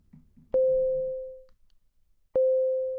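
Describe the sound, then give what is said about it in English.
Two identical phone notification tones ring out loud, each a steady pitched chime that slowly fades, spaced about two seconds apart, with faint low murmuring under the first. “Keep getting these notifications on Buntspace.”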